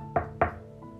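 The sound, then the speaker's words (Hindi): Two firm knocks on Santa's door, evenly spaced, ringing briefly against a quiet background with a faint steady hum and no voices. “तभी अचानक से किसी के दरवाजे खटखटाने की आवाज आती है।”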